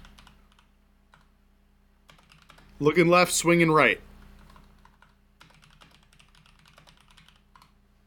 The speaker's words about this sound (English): You can read as I'm typing.